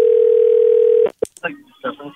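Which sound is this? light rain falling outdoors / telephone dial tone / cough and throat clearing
telephone dial tone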